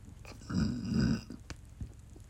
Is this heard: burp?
yes